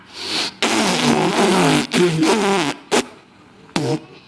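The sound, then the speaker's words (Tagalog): A voice imitates a fart with a loud, sputtering raspberry that lasts about two seconds, followed by a few short, buzzy bursts. “Pag utot ko, so ito na.”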